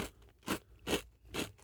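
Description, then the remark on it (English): Three crisp, crunchy bites into a classic chocolate chip cookie made with semi-sweet chocolate chips, evenly spaced about half a second apart, fairly quiet, with no talking. “These have turned to have some crunch.”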